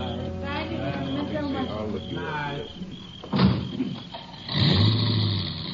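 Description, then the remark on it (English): Voices murmur at first, then a car door thuds shut and an engine turns over and rumbles steadily, a guest's car starting up to pull away from a house at sundown. “About sundown, the last of the guests left the house.”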